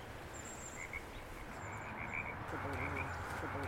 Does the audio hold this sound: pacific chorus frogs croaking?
yes